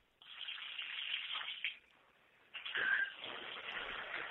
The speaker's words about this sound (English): I had to get back in the shower.